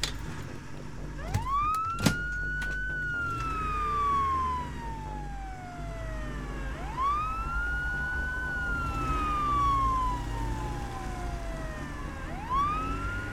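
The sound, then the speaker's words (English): An emergency vehicle siren wails in long rising and falling sweeps, repeating about three times, loud over a steady low rumble of highway traffic. “Faint whimpers intermix with the cacophony of the highway, the sirens, the bounding truck.”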